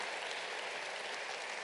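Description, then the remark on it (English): Steady applause for a choir, a dense wash of many hands clapping at once with no breaks, holding an even, loud level throughout and no voices audible. “And let's give our choir a hand clap.”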